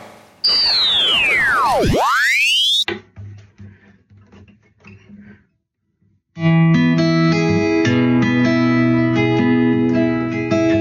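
A radio being tuned: a loud whistling tone dives down and swoops back up, then choppy bursts of static and broken fragments, a brief pause, and steady music comes through.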